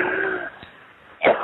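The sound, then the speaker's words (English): During a deliverance prayer, a deep, harsh cough bursts out near the end after a fading tone and a brief quiet gap, loud, with a rough throaty rasp. “Take a Jesus deep cough and cough them all out right now.”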